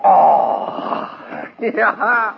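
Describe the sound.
A drawn-out, rough cougar howl wails for over a second at night, fading before a man starts speaking.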